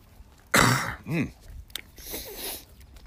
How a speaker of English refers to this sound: Ah, yes. The fun of recording in the morning, right? I'm more likely to have a cough early in the morning after I deal with all the sinus stuff.